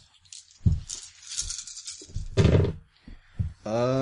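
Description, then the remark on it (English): Dice rattle and tumble across a table in a quick series of clattering knocks and dull thumps, rolled for a survival roll in a tabletop role-playing game and landing on a one, ending with a short voiced groan. “So if anybody wants to go forward, you're going to need to give me a survival roll to track.”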